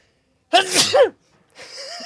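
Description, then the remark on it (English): A single loud sneeze erupts with a sharp breathy burst, followed after a short pause by a softer voiced sound. “That's why it makes me sneeze if I leave them on.”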